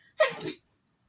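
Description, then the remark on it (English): A single sharp sneeze bursts out, a quick breathy explosion lasting under half a second before silence returns. “Bless you.”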